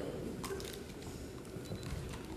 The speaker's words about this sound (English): Let me get my water open because I'm drying up on you.